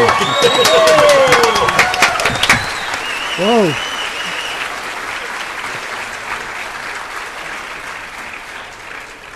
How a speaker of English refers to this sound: So I think that's cause for a round of applause by everybody.